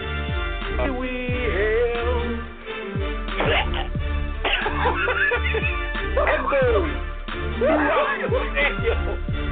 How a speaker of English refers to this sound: There is a pause throughout the stadium as the man sounds like he just coughed up a lung.